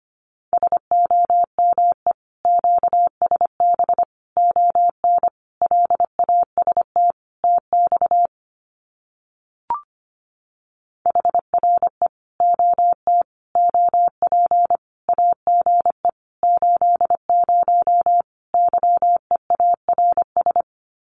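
Morse code of common QSO phrases sent at about 25 words per minute: a single steady mid-pitched tone keyed in rapid dots and dashes, with a short break midway marked by a faint click.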